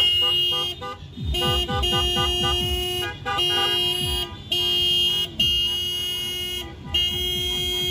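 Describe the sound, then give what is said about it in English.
Loud car horns blare almost continuously, several overlapping in sustained honks with brief pauses between bursts, amid the rumble of passing vehicles, during a Dia de los Muertos themed caravan near Washington Middle School on Saturday, October 31st, organized by Habitat for Humanity of Greater Los Angeles and Washington Neighborhood Association. “On Saturday, October 31st, residents living near Washington Middle School were met with loud blares of car horns and music.”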